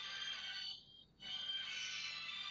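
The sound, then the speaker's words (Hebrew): A telephone ringtone chirps in a bright, high-pitched electronic warble, fairly faint, with a brief pause partway through before it resumes. No one speaks over it. “יש לי טלפון.”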